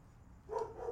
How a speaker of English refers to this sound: Dogs are barking and shit, dude. I think they're hungry.